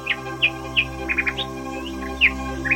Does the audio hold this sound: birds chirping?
yes